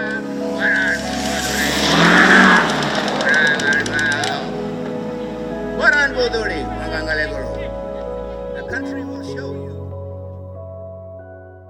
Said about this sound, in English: this high-powered ute a few metres behind the stage suddenly revved its engine, and there was this extraordinary turbo whoosh as it accelerated past that felt very clearly directed.